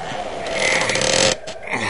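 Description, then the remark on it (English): Heavy doors of a barrel stockpile in an old lighthouse are dragged open with a loud, grinding creak that swells and holds for about a second, then drops to a quieter scraping rasp. No one speaks. “Come on, you bozos! I ain't standing around here all day while you crack wise. Pull them doors open!”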